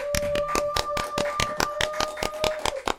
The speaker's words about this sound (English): Can I get some hand claps in here, please?